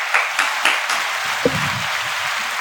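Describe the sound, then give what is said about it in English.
A short burst of crowd applause, a steady wash of many hands clapping with a few sharper claps standing out at the start, fairly close and moderately loud, with no voices. “Runner applause.”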